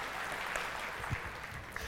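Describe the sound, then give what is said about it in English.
An audience applauds, a dense, steady wash of many hands clapping that holds evenly for a couple of seconds without anyone speaking over it. “So, all right, let's give everybody a round of applause.”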